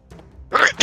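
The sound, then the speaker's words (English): A sneeze: a soft, breathy intake followed by a sudden sharp burst of air that fades briefly, then a second hissing gust right after. It is fairly loud, with no talking. “Bless you.”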